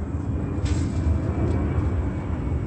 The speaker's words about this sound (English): This is another plane seconds later, 9:02 a.m.